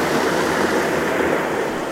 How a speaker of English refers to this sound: The wind blowing through the grass.